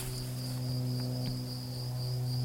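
A cricket chirps in a steady, continuous high trill outdoors, with a low droning hum running underneath and no one speaking.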